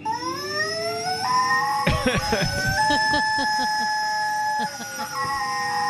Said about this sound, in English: He put a rubber chicken inside a vacuum, and this is what it sounds like.